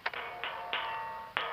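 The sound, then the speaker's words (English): A coded knock on a camouflaged metal hatch in the ground: four sharp raps with a ringing, resonant tone, the first three in quick uneven succession, then a longer pause before the last. No voices. “I'll open it when I hear you use this knock.”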